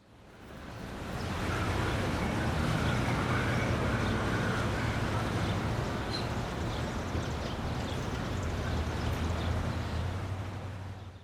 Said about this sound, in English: I can't believe all this freaking traffic. There's the FBI headquarters building. I can see it right there.